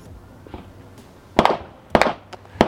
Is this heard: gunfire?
yes